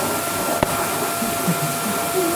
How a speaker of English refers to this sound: Hello, and welcome to Pineapple Beer Club, the Hoovering episode.